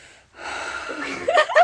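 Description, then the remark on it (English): A voice imitates heavy breathing exercises, with a long, loud, breathy inhale followed by sharper, gasping puffs of air near the end. “I was on Zoom, and I was doing breathing exercises because I had a preterite quiz, and I had no idea how to do it, so I was going...”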